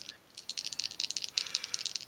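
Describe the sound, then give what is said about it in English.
Dice are rolled again, clattering and tumbling for about two seconds in a rapid run of bright, sharp clicks and rattles at a fairly steady level, with no voices; the roll comes up 17. “Fuck, roll again.”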